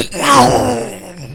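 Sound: voice imitating an explosion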